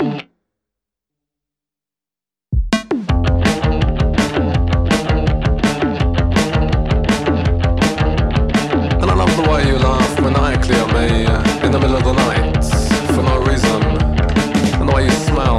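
After about two seconds of silence, a loud song kicks in abruptly from the beginning, restarted on an Alexa smart speaker, with a driving, steady drumbeat and dense, gritty, distorted instrumentation playing continuously with no voices.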